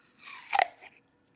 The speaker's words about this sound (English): And they're called Cosmic Apples. And I like to like describe them as a combination of a Honeycrisp and maybe like a red apple that's super crunchy. So I'm going to take a bite.